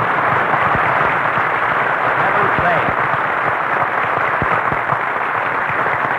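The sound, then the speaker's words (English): A studio audience applauds steadily for several seconds as Jack Benny is introduced on the last program of his show's season, a dense, even wash of clapping with a muffled, band-limited quality, while a voice briefly speaks over it. “Never mind, Jack Benny, applause.”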